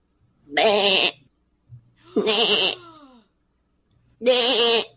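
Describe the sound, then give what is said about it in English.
A fluffy yellow and blue Pokemon stranded alone on a plateau bleats three times in distress, each call loud and quavering, separated by short pauses with no talking. “A fluffy yellow and blue Pokemon stands alone on the plateau, bleeding in distress.”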